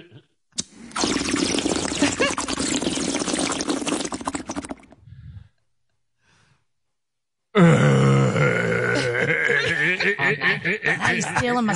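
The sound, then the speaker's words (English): About four seconds of steady, crackling bubbling from a bong being hit, then a short silence before a strained, groaning voice comes in. “I need a fucking bong hit right now.”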